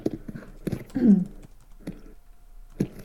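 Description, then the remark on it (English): Quick, clattering keystrokes on a keyboard in short uneven bursts, with some muffled vocal sounds mixed in underneath. “Excitedly typing.”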